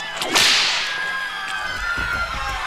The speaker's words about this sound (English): And then he starts cracking the whip, like literally.